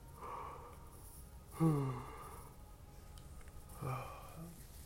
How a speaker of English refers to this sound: The way I see when I start yawning with this meditation, I'm tapping into the parasympathetic part of the nervous system, helping me relax, heal, rejuvenate the body, not in a stressful fight or flight mode, just relaxing.